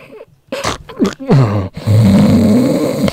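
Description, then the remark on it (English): A voice imitates wheezy, asthmatic snoring: a few raspy, groaning gasps and sharp breaths, then a sustained buzzing snore-like drone, loud. “There you go, snoring asthma.”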